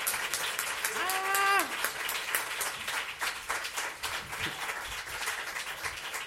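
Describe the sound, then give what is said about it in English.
One person clapping hands quickly and continuously to his own song, a dense, steady patter throughout, with a brief rising whoop or whistle near the start and some faint voices underneath. “For a moment there, I realized I was that jerk who's like clapping to his own songs.”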